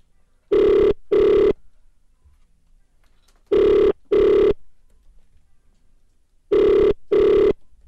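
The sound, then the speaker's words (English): A telephone ringback tone on an outgoing call: three pairs of double rings spaced about three seconds apart, clear and steady with silence between, no voices. “Right, it's ringing.”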